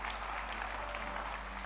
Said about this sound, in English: Can you clap your hands for seven great principles?